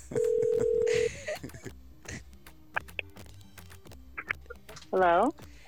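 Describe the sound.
A phone dials out as someone calls a woman: a steady tone for about a second, a few short scattered beeps, then a loud warbling tone burst near the end, with faint murmuring voices in the background.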